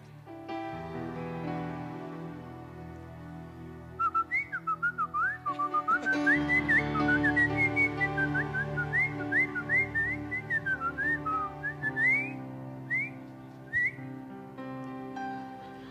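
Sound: person whistling a tune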